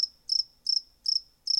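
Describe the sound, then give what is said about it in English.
Crickets chirp alone in four evenly spaced, high-pitched trilled bursts, with a faint steady tone lingering between them and no voices, played as the response to a joke that falls flat. “You say something incredibly profound or funny and you just get this.”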